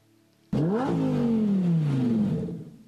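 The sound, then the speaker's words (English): A car engine suddenly roars to life and revs hard and loud, its pitch jumping up quickly and then slowly winding back down over a couple of seconds. “Wow, nice car, huh?”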